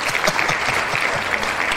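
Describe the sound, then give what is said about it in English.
Steady applause from a group of people, a dense crackle of many hands clapping at an even loudness throughout, with no voices heard over it. “Hey, man, I want to applaud you, Chief.”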